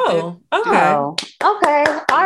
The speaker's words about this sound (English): Hand clapping.